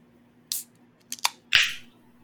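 A shaken can of light beer being cracked open: a few sharp metallic clicks from the tab, then a loud pop followed by a strong, foaming hiss that fades over about half a second. No talking.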